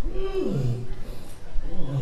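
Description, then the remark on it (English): A voice imitates a monster roar twice, each a low, drawn-out call sliding downward in pitch, moderately loud, with a short gap between them. “Maybe we'll get our pictures of the campus roar!”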